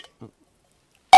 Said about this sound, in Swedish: Ska vi skåla med vattnet? Vi får skåla med vatten och äta vår pasta.